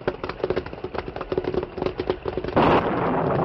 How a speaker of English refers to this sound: Suddenly, a bolt of lightning hit the top of a pine tree near the creek's bank. And splinters, long as Indian lances, flew from the split trunk.